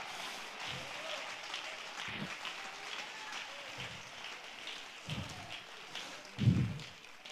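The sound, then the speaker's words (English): An audience gives the Lord a clap offering of praise, a steady burst of applause with a dense patter of many hands and a few louder low thumps near the end, and no voices over it. “Let's give the Lord a clap offering of praise.”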